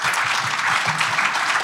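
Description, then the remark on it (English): An audience applauds, a dense, steady patter of many hands clapping at once, fairly loud and even throughout with no voices over it. “Highly encourage rounds of applause if you really vibe with something that the speakers have said.”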